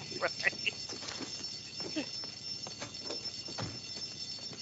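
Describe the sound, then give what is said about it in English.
An alarm rings steadily and continuously throughout, a high, sustained tone that never pauses, while muffled voices and scattered commotion rise and fall beneath it. “We heard the alarm.”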